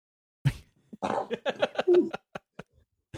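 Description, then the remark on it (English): A sudden, sharp sneeze, put down to spring pollen, bursts out, then a string of short, sputtering breathy sounds with a brief higher-pitched tonal squeak, trailing off into quiet. “You get the weirdest sneezes.”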